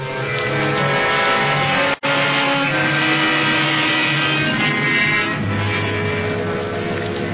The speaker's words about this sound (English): The rest of the drive was uneventful. The street lights were on now, and flashes of light from them darted into the car